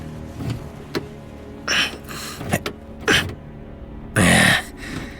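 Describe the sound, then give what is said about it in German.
Several short whirring bursts at uneven intervals as a car engine is cranked and fails to start, the last attempt longest and loudest. No voices. “Nee. Geht nicht. Der Wagen ist absolut tot.”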